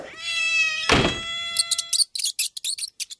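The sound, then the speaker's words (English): A cat gives a long, steady meow, cut by a dull thump, followed by a quick run of short, high-pitched squeaks. “The answer is, while the cat's away, the mice will play.”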